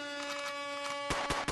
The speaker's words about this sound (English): I don't like your air horn. Yeah? Sorry. Where do I get a good air horn from? It's not the official one. Hit it again. Go there. Where'd you get that from? I got it from the app.